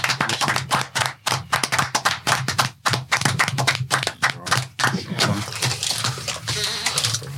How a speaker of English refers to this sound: Let's clap for him.